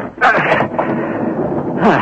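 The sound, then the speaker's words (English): A heavy trap door on the right side of a counter is pushed toward the wall and hauled open with a continuous rough, grinding scrape, marked by two louder thudding bursts, one just after the start and another near the end. “I see the trap door. I'll have it open in a second.”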